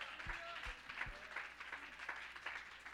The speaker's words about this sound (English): Oh, somebody clap your hands and magnify him.